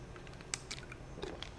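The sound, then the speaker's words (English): Someone takes a quiet sip of Gatorade, with a few soft, wet mouth clicks and slurps spread over a couple of seconds. The sounds are faint, with no talking. “Let me take another sip of some Gatorade here.”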